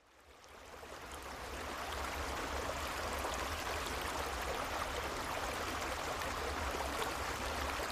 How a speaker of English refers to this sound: It also includes the sound of the creek behind the cabin in the background, and it goes on for a while after the guided part of the meditation ends.